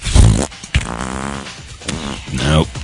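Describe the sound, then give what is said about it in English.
A voice imitates a fart with a few loud, buzzy, sputtering bursts, drawn out and wavering over about three seconds. “I've been at the last time I was at a Walmart, in fact, the guy in front of me looking at birthday cards had no issue with farting the entire time.”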